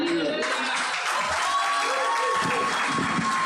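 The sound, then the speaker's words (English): A crowd gives another steady, loud round of applause, dense clapping filling the whole few seconds, with some voices and faint cheers mixed into the noise. “Please, can we give another round of applause?”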